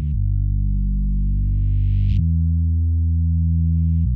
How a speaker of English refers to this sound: The bass line is a very simple sustained note which uses a filter to open up the high frequencies during each repetition. Give this a listen, the way it opens up. Like that buzz sound.